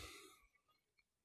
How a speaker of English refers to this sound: Stop yawning into the mic because people might be driving while listening to this, and they may cause them to actually drive into a telephone pole.